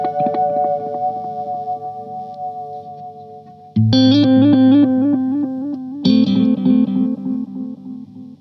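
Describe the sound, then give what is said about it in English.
An electric instrument plays sustained notes, then bursts of repeated phrases that echo back again and again, with long delay repeats from a delay unit set to a long delay time stacking up, fairly loud and unaccompanied by talk. “This is a long delay now then for you.”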